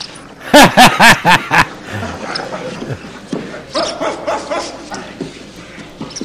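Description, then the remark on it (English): A dog gives a rapid burst of five loud barks, then falls quiet while people talk over faint background noise. “That's a boy. Good dog. Fetch.”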